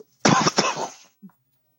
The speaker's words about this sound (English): As he coughs. It's a COVID, it's a COVID cough.